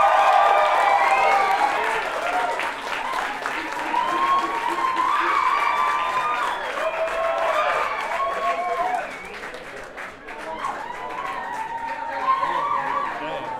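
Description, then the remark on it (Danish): A concert crowd claps and cheers loudly and steadily, dense clapping mixed with rising whoops and shouted voices, easing briefly near the end before swelling again. “Giv en hånd, kom nu, lad mig lade.”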